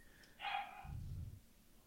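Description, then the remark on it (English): A single short dog bark rings out, moderately loud, followed by a low rumbling noise that fades after a moment. No one speaks. “The dogs be barking.”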